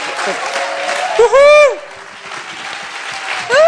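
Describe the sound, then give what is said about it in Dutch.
A crowd applauds people on a stage steadily throughout, a dense wash of clapping, with loud rising whoops and cheers bursting out near the middle and again at the end. “Geef ze een keihard applaus, jongens. Just give them applause, just a killer applause.”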